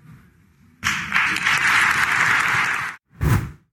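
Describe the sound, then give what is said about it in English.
An audience breaks into loud, steady clapping that lasts about two seconds before cutting off. A short final burst of sound follows. No one speaks. “You know, what drives me crazy is all the people listening to this garbage nodding their heads in agreement and clapping.”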